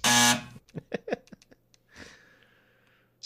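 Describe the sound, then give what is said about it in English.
A loud, harsh wrong-answer buzzer blares once for about half a second, a low raspy drone marking a big X, before voices start talking. “Wait, you're giving me a big giant X?”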